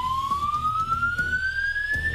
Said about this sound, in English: Stand by all the while the alarm's going off.